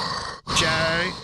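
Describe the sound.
A voice imitates heavy breathing: a short breathy exhale, a brief pause, then a longer rasping, airy breath with a faint hissing, wheezy edge, fairly loud and alone.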